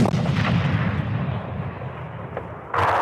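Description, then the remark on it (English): A heavy howitzer, fired by soldiers training with heavy weapons at a military outpost, booms with a deep low rumble that rolls and decays over a few seconds before a second sharp, bright crack of gunfire bursts in near the end. “This is a howitzer, something between a mortar and a cannon.”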